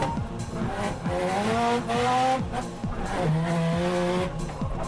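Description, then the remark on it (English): A car engine revs hard and wavers up and down while tires squeal continuously as the car drifts, its rear sliding sideways, loud throughout, with repeated throttle blips and no talking. “Drifting is the art of sliding the back of a car.”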